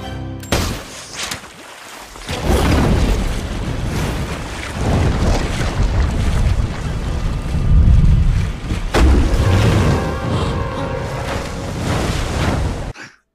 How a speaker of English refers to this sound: And then she swims to a buoy and suddenly we turn into a whole nother movie. This shark's like jumping, nipping, trying to nip at her out of the water. She's shooting flares at the whale.